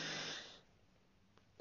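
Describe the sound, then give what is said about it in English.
A deep, airy breath rushes out and tapers off into near silence, followed by the sharp start of another breath at the very end, as a person demonstrates deep breathing, pressing the stomach in while breathing out. “Press your stomach out, breathe out, press your stomach in.”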